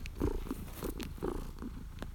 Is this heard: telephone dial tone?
no